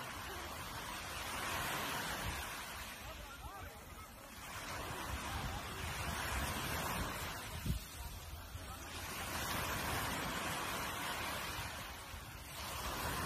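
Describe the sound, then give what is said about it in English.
Ocean waves roll in and break on the shore in a steady rhythm, each swell rising into a broad wash of surf and then receding, with no voices over the sound. “I love to hear the waves breaking on the shore.”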